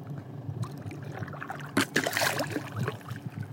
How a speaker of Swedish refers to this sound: Ja, det är en liten segelbåt som puttrar lite längre bort, men annars har jag hela havet för mig själv.